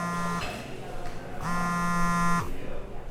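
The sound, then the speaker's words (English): A phone vibrating in a pocket in two bursts, a short buzz followed by a longer one lasting about a second, each a low, steady, rattling hum over a constant murmur of background noise. “Okay, so you're in the middle of enjoying your lunch, and suddenly you hear that all too familiar buzz in your pocket.”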